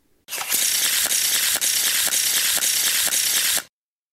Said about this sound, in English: So let's go ahead, shuffle that deck, and see who we get from the Minnesota Vikings.